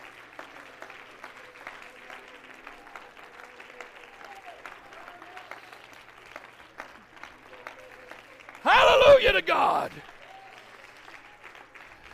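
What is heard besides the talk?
audience clapping hands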